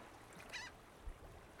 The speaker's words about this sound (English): Thin clouds spot the sky, and you can hear the distant call of seagulls that have traveled out to the ocean to pass on.